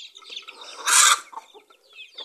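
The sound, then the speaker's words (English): Chickens cluck and chatter, with one sharp, louder squawk bursting out in the middle of the short stretch of busy fowl noise. “So it's like, you bribe the chickens by feeding them.”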